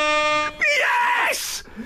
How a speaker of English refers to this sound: An air horn, please. An air horn, please.